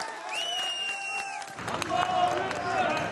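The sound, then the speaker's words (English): A crowd in northern Syria chants "God is great" in unison with sustained voices for about a second and a half, then breaks into louder, rougher cheering and shouting from many people, celebrating as a survivor is loaded into an ambulance. “Chants of God is great echo through a crowd as another survivor is loaded into an ambulance.”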